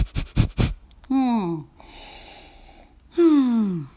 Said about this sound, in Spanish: Déjame tomar un break y respirar. Eso es Kapalabhati, esa es una respiración de yoga. Y por la nariz.